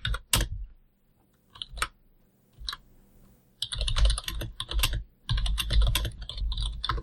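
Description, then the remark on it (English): Typing on a computer keyboard without bumps on the home keys, starting with a few scattered clicks and then turning into rapid, dense bursts of keystrokes. Clear, with no one speaking. “So how are you gonna find your resting place when you're touch typing?”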